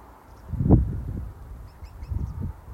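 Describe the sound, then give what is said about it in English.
Waterfowl call in a low, honking chorus as birds come in to settle into trees and onto water shortly before sunset, around 4 p.m., with one louder burst near the start and softer overlapping calls afterward, set against a steady outdoor murmur. “The birds are coming in and settling into the trees, and some of them are coming down onto the water.”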